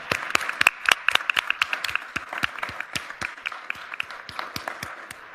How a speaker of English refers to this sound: So please join me in giving her a round of applause.